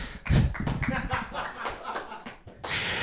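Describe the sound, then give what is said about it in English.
A brief burst of audience clapping, dense and uneven, mixed with scattered laughter and chatter, swelling at the start and again at the end. “Yeah, let's clap for AIDS.”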